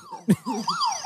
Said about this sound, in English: Oh, so close. You've got to do your buzzer.